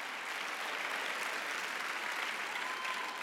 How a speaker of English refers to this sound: This year, I felt the Lord tell me to call the church to a 40-day fast. 3 people clapping. About 500 really nervous right now.